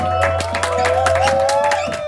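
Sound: audience clapping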